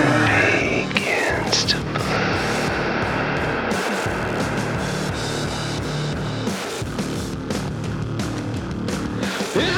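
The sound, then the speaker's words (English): In the second verse of a song, a breathy whisper smeared into a long, washing reverb tail that blurs into steady white-noise hiss, loud and continuous for the whole stretch over a low, droning musical bed. “I liked how the whisper turned into a really long reverb tail, which then turned into white noise.”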